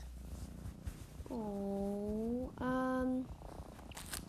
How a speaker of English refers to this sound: So Minnie's been with us for like a couple months. Not a couple months, but like since September. She is very cute. She's purring right now, I don't know if you can hear.